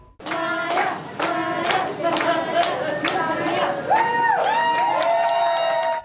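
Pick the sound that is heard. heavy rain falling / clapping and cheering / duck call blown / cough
clapping and cheering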